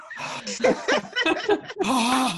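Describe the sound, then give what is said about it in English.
A voice imitates a woman's heavy, labored breathing as she films with a very heavy camera: a rapid series of breathy, half-voiced pants, then one longer, drawn-out exhale, fairly loud and strained. “She's breathing like.”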